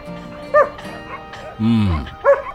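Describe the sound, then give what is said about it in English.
A dog, Gertie, gives two short, sharp barks separated by a longer, lower grumbling howl-like vocalization, with a bit of faint room noise between them. “My dog translation powers say that's a yes.”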